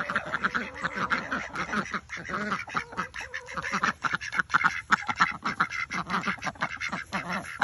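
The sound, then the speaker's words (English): A flock of ducks quacks continuously and loudly in the morning, overlapping calls forming a busy, chattering chorus with no pauses. “Good morning, babies. How's everyone doing this morning? Duckies!”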